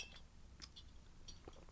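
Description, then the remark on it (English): A rubber top, pushed back on, is popped off a clear glass bottle, heard as a few quick, faint clicks and glassy clinks scattered over a couple of seconds, with no one talking. “And now what I'm going to do is I'm going to pop the rubber top off the glass bottle.”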